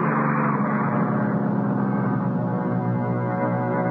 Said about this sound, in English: It was a 107. No good for me. When it pulled away, I was all alone at the bus stop. It was clouding up and looked like rain.